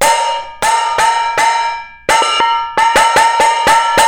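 Metal bowls, from a set of about seven stacking bowls of different sizes, are struck about a dozen times in an uneven rhythm, each hit giving a loud, bright, bell-like clang that rings and fades before the next. No one speaks.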